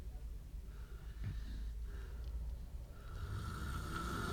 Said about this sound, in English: So I'm too busy listening to the snoring to actually keep talking about something else, but maybe I'll try to just keep it down there.